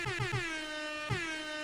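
A loud, brassy air horn sound effect: three quick stuttering blasts, then a long sustained honk with a fresh punch partway through. It plays alone with no voices.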